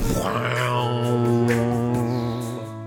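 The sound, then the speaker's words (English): A voice imitates a gong with a single low, sustained humming tone that rings steadily for about three seconds, fairly loud, slowly fading at the end. “A gong.”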